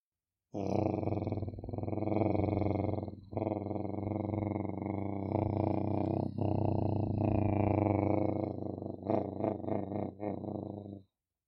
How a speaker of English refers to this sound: Through the water, you hear the pulsing and surging and gurgling of the bubbles.